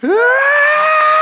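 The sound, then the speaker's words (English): A voice imitates the character Frankie screaming on seeing a crowd: a loud, sustained scream, rising sharply at the start and then holding a steady high pitch for about a second, alone. “Because as soon as Frankie sees the crowd, he starts screaming.”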